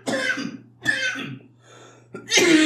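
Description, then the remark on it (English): Three harsh coughs with short pauses between them, the last one rougher and more drawn out, over a faint steady hum. “No, anytime the coughing starts, just stop talking.”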